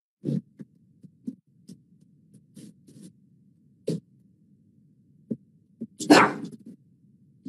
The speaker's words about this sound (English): as we wait for Matt and my dog barks